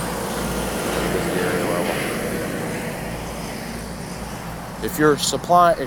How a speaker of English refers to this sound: Sorry about the trucks.